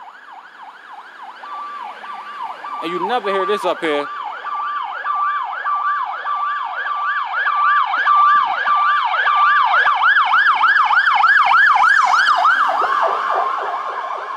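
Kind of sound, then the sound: vehicle, ambulance siren passing by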